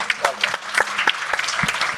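A small audience claps politely, a light patter of overlapping hand claps at moderate volume that stays fairly even for a couple of seconds without cheering.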